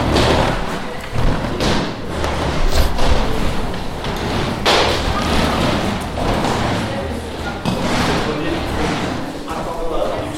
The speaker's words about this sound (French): On va reculer les chaises et se mettre debout.